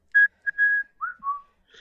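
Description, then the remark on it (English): Someone whistles a short, jaunty march-like phrase from a famous film march tune, about five clear notes, some held and some clipped, fairly loud with no speech. “It's that whistling when anyone mentions Bridge over River Kwai.”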